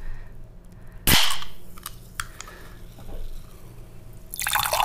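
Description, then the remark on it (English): A sharp, hissing pop as a bottle of German-style light lager is opened, followed by a few small clinks and drips, then the rising fizzy rush of the very pale, clear beer being poured into a glass, building a thick foamy head. “Should we open it up? I think we should.”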